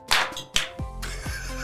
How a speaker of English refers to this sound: So Decidueye slowly approaches Barbaracle and realizes that without feathers, this would make an almighty slap. And they go in for the all-mother of high fives.